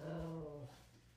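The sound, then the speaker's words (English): A dog lets out a single drawn-out, whining vocalization, a pleading whimper that trails off after about half a second, followed by quiet. No one speaks. The dog wants to be given its ball to play. “Anyway, so I don't know what to do because if I don't give him the ball, he's just going to bark at me.”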